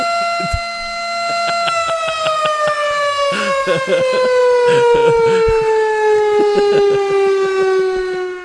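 A loud, steady siren wail plays as a breaking-news alert sound effect, its pitch sliding slowly downward over about eight seconds, with some brief sharp bursts layered over it.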